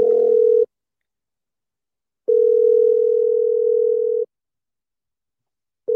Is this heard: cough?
no